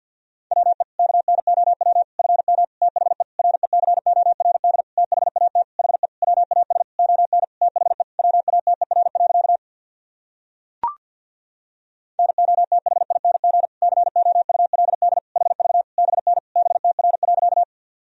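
A single steady mid-pitched tone keyed on and off in very fast, continuous Morse code at 50 words per minute, sending practice sentences, about ten seconds, then a short pause with a brief click, then more rapid keying. No voices.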